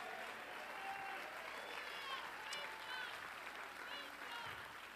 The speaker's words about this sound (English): Is there anybody excited that you're saved? You say, well, why do y'all clap so much? You know why? Because we're excited. That's why. Come on, clap your hands. David said in Psalms 47, oh, clap your hands, all ye people.